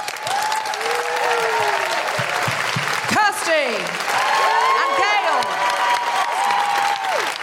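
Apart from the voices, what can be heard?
audience applause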